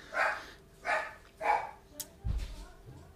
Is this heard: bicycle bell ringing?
no